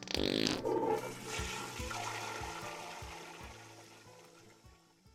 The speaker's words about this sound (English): Head on down to Toilet Barn. Don't worry, we'll flush for you.